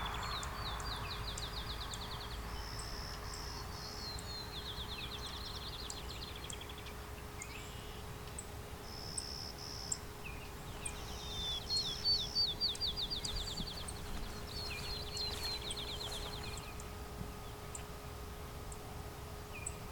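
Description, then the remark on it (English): A female clay-colored sparrow with food in her mouth gives short, sharp ticking chip calls at irregular intervals, while other birds trill in repeated bursts over a steady outdoor hum. “Got, I think, a female clay-colored sparrow in front of me. Some food in her mouth, just ticking.”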